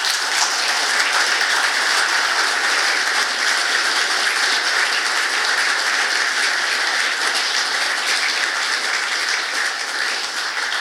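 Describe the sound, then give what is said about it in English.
Steady, dense applause from an audience after a talk, given for the speaker and the People's Mosquito, a continuous crackle of many clapping hands at an even loudness for about ten seconds, with no voices over it. “Big hand for Alan, please, and the People's Mosquito.”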